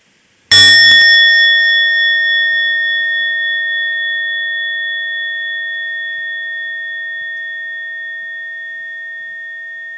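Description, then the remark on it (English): A single meditation bell is struck firmly by the bell master, giving a bright, full tone with clear overtones that rings on and slowly fades over ten seconds of quiet. “After that full sound, everyone, including you, the bell master, has a chance to practice 3 times deep breathing in and out.”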